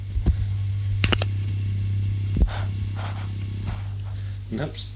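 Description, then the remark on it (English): Scattered sharp crackles and clicks burst irregularly over a steady low electrical hum as a telephone cord is rattled around on the line, with a few faint scratchy bursts in between. “Look, I'll just rattle the cord around and see if I can hear any speech.”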